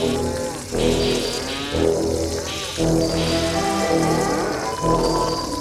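Cattle moo in a pasture in a series of long, drawn-out calls that overlap and follow one another closely. A steady hiss, like light rain, runs underneath.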